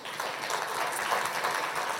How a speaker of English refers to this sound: So a big round of applause, please, for our panel.